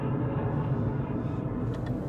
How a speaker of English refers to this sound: Can we get another airplane going overhead? Give me another freaking... Did someone order some airplane sound effects, please? Hello?